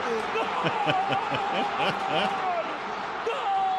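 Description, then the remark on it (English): A tin can is banged repeatedly in a quick, uneven rhythm over the steady roar and chatter of a stadium crowd at a Panama versus Honduras football match in Panama, with a thin whistling tone running through. “Do you hear that? … pointed out the tin can against the...”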